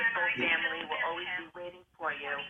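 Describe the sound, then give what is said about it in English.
A caller's radio plays faintly in the background of a phone call, creating an echo on the line, its muffled, tinny voices running almost continuously for a couple of seconds with one brief break. “Somebody's got their radio on.”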